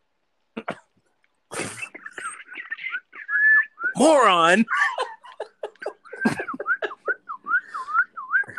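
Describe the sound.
Someone attempts a mocking whistle: thin, wavering tones that rise and dip unevenly, broken up by breathy sputters, a harsh cough-like burst and a shouted word.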